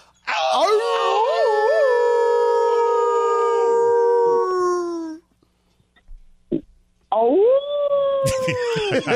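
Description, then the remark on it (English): Several hosts imitate wolf howls together as a greeting in a long, sustained, wavering chorus lasting about five seconds. After a short pause, a second loud group howl rises and holds. “I can't believe my pack brothers have responded with such a respectful howl.”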